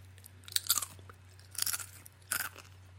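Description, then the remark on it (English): Three wet-sounding crunches of a snack being chewed, spaced about a second apart, each a quick burst of crackly bites over a low steady hum, with no talking. “Can I just say that the crunch sounded wet almost.”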